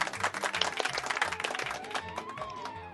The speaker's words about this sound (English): You know, I'm glad you hired those people to applaud for us